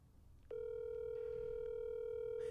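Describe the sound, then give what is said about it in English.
A telephone dial tone on speakerphone as a call is placed, starting abruptly after a brief pause and holding as a steady, unbroken electronic hum, loud and alone with faint background noise beneath. “I'm gonna call her on speakerphone.”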